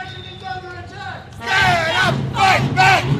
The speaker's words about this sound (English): Thousands of teachers chanted, shouted, and marched into towns and cities around the country today in the first ever joint.